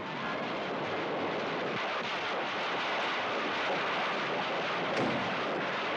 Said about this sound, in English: See them fireworks.